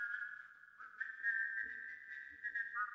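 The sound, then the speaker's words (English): A distant person whistles a steady, clear melody with gentle pitch shifts while walking a gritty path, the thin tone carrying softly for a few seconds over faint background noise. No one speaks. “Something that hears a distant whistle, a sound it can't mistake.”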